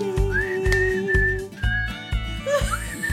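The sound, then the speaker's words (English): Someone whistles a few shaky, breathy notes, the pitch wavering and sliding, over a steady rhythmic low thumping beat in the background. “It's poor whistling. Very poor whistling effort from myself.”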